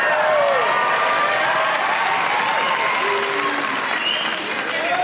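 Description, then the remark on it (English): An audience applauds loudly and steadily for about five seconds after hearing of six months sober, a dense wash of clapping with a few whistles and shouts mixed in before it eases slightly near the end. “Don't clap, it's court ordered.”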